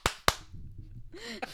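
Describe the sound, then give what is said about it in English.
Two sharp, loud hand claps in quick succession, followed by a short voiced sound and a softer snap-like hit. “I know, but I put claps so that you could cut it out.”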